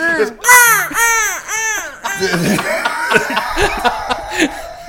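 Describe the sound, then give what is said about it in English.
A voice imitates a seagull with about four loud, high, arching squawks in quick succession, followed by laughter and excited, overlapping talk. “And then it starts making the seagull noise.”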